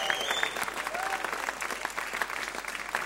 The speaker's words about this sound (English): But let's give our praise and worship team a massive clap. And they're awesome.